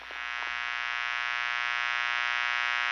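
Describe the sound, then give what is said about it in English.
A steady, unbroken electrical buzz of a light bulb, rich in bright harmonics and holding at a constant, fairly loud level for the whole stretch, with a few faint clicks at the start. “Oh, listen to the wonderful buzz of a light bulb.”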